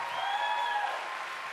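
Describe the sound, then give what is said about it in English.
A church audience applauds people who have stood up, in a steady, dense wash of clapping, with high cheers and a sustained whoop riding over it. The applause stays loud throughout and fades only slightly at the end. “Let's cheer for them.”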